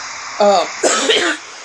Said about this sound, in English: man, I'm coughing bad.